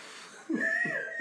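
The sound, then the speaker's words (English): A voice imitates a woman's heavy breathing: a couple of breathy, voiced gasps rising and falling, moderately loud, with no words. “Oh, and then and the girl breathing.”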